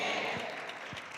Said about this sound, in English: Thank you for the seven people that clapped.